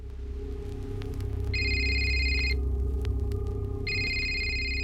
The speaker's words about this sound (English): Just one moment. This is interesting. A call is coming through on my phone.